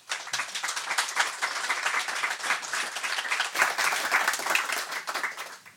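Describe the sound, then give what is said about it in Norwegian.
An audience applauds to welcome an invited speaker on meat, climate and agriculture, many hands clapping in a dense, even patter that holds at a fairly loud level for several seconds without any voices. “Gi han en varm applaus.”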